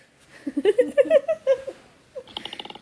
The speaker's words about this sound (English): A koala? That's what they sound like? Our koalas so are scary. Fucking vicious, actually. I feel like that would make some dope anime sounds.